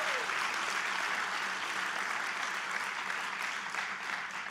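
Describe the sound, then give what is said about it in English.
A church audience claps steadily for Jesus during a service, a dense wash of many hands that holds at an even, fairly loud level throughout, with no voices standing out. “Come on, let's give Jesus, man, I've told you we're going to clap a lot today.”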